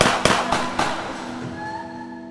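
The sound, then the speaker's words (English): Four sharp gunshots, fired by two men lying in wait in a carport of the parking lot outside an apartment, crack off in quick, evenly spaced succession, loud, then give way to a lingering high ringing tone as the echoes die away. “DeRose went down with a gunshot wound to the neck. Durkin had been shot in the chest.”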